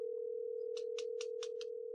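A steady telephone line tone hums for the full two seconds, with five quick, evenly spaced clicks partway through. The call goes unanswered and no one speaks.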